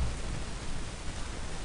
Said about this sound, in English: We're getting a little bit of static. It sounds like the tide has come in to the podcast. So let me fix that really quick.